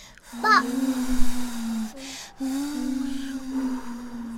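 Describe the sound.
A child's voice imitates wind with a long, steady hooting "whooo," held in two drawn-out breaths separated by a brief pause, moderately loud.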